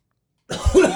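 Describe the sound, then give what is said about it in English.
A single abrupt cough bursts out into another person's face after a moment of silence, harsh and breathy with a short rasping tail. “Oh, you just, like, coughed in my face.”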